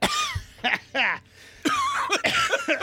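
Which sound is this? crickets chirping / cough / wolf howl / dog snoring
cough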